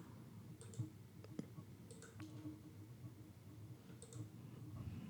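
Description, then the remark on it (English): A few faint, scattered key clicks at uneven intervals as someone presses keys on a computer keyboard to scroll, over a quiet background hum with no talking. “Now I can scroll with the keyboard.”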